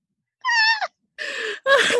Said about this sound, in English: This cat is so disappointed in us right now.